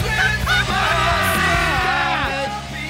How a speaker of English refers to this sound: … in a tube top, screaming from the top of her lungs.